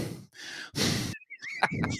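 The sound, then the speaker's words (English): A voice imitates a person breathing super heavily while playing a video game: three loud, rough breaths in and out, followed by a few strained, whiny vocal sounds. “Like you just like just him breathing like super heavy.”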